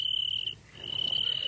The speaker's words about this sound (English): Now, George, he's just a little cricket and he's not hurting you.